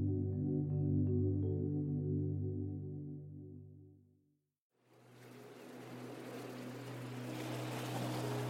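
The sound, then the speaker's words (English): The engine of a long blue and white passenger boat full of day trippers drones steadily with strong low harmonics, fades briefly, then returns as a broader rushing roar of motor and churning water, continuous with no talking. “You arrive by boat.”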